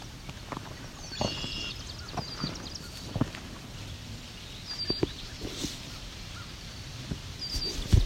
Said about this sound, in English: Those ringing calls are swamp sparrow.